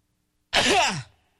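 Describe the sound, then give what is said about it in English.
A single sneeze: a sudden, loud, breathy burst that lasts about half a second and then trails off quickly into silence, with no talking around it. “Bless you.”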